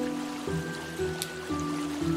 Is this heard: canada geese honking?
no